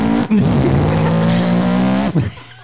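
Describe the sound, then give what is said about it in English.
Loud hot rod engines at a car show in the city roar past with a sustained screech of squealing tires, filling about two seconds before the sound dips and cuts off abruptly. “A bunch of hot rods coming around.”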